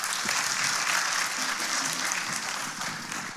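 A crowd claps steadily and fairly loudly, a dense wash of many hands applauding without pause for a few seconds, with no one speaking over it.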